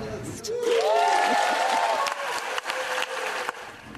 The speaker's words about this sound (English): That applause on the Senate floor came after Democrats passed the multi-billion dollar Inflation Reduction Act.